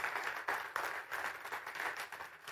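A crowd applauds steadily after a law school scholarship is announced, a dense, hissy wash of many hands clapping at once that holds at an even, moderate level for a couple of seconds with no voices.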